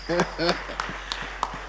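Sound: audience clapping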